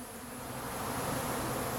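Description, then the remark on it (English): A dense, steady hum of many female worker honeybees buzzing at the opening of a Flow Hive after a puff of smoke, a continuous droning swarm sound that stays loud and even throughout, with no voices. “The reason I'm calling them girls is because all of the worker bees are female.”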